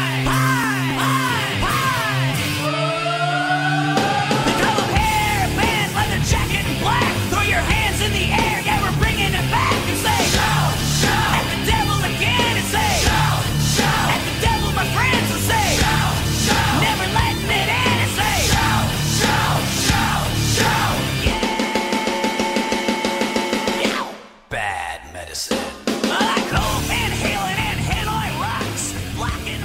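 A loud hard rock song with yelled, shouting vocals over dense distorted guitars and pounding drums, playing continuously before a brief dropout near the end, then kicking back in.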